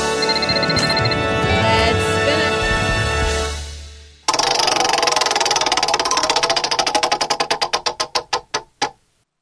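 A roulette wheel spins with a steady whir, then the ball rattles across the pockets in rapid clicks that gradually slow and space out until it settles. No one speaks.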